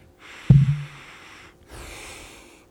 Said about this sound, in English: I don't know which is better when you're cooking to do, it's ready to like dig your nose in and sniff it like one of those old guys you see trying to impress a date at a wine restaurant.